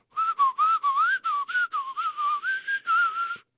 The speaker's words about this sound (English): No, let me try whistling one more time.